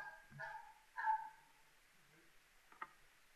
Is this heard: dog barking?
yes